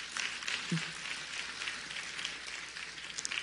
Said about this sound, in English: On behalf of his beautiful bride of 66 years, we should applaud just on that point.